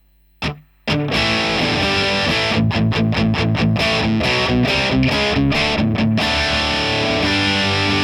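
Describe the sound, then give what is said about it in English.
Loud, heavily distorted electric guitar through the modern high-gain channel of an amp, played as a short muted pick attack then sustained chugging chords with a fizzy, bright top end and no talking. “It's a bit fizzy, that channel. Yeah, it's got that top end there.”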